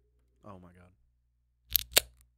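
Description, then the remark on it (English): A short vocal sound, then a cold Busch Light beer can cracked open: two sharp, loud snaps a fraction of a second apart, followed by a brief fizzing hiss that quickly fades. “Just crack it open. Just see how it feels.”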